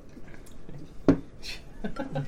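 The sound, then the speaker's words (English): A single sharp splash-like drip of water lands, followed by a brief hissing trickle, with soft voices murmuring faintly in the background throughout. “As you, sorry, people at home, I'm being distracted by water.”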